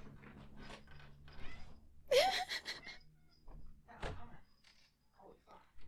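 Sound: cat meowing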